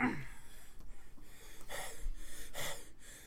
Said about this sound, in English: don't panic about my breathing. I always breathe like this.